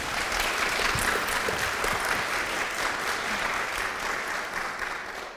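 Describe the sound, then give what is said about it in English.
A crowd claps steadily one morning to welcome a woman about to share her testimony, a dense, even wash of many hands holding at full strength for several seconds before starting to taper off at the end, with no voices over it. “Give her a round of applause this morning.”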